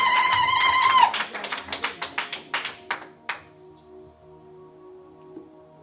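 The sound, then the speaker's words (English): A crowd at a worship service claps along in praise of God for a few seconds over sustained organ-like tones, the claps coming in a quick, uneven burst that fades out, leaving the music ringing on its own. “I wish somebody would clap your hands and give God praise in the house.”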